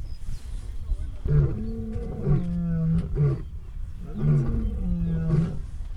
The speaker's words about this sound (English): And we had a moment where just in front of us we had these lions roaring. It sounded really close. They said that, you know, their voices carry, but it sounded like it was right in front of us.